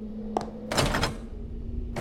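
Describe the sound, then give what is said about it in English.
A door deadbolted from the inside is tried: a sharp clunk, then a rattling burst of handle and latch jiggling, and another knock at the end, over a steady low hum. “It's deadbolted from the inside. Rip it off its hinges. I'll build another door.”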